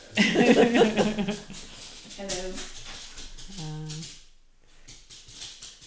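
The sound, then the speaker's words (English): A dog lets out two short, tonal barks a second or so apart, at moderate volume, following a burst of lively talk and laughter. “The dog now wants to join the conversation.”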